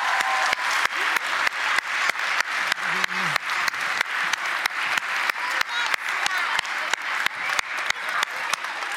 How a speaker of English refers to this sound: Let's clap for God this morning.